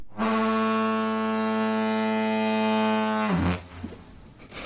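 A loud, deep, throaty car hooter blares in one sustained blast for about three seconds, rich with buzzing harmonics, then cuts off abruptly into low rumbling background noise.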